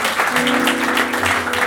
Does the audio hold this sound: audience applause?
yes